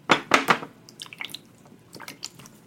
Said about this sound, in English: In the rainy night on the road. The rain drips down onto the window of the school bus.